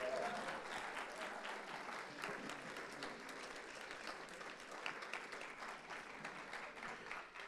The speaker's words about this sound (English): Got to keep clapping.